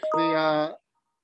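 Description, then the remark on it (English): A single electronic notification tone sounds for under a second, a steady buzzy chime that cuts off abruptly and leaves silence behind it. No one speaks over it. “Little notification there.”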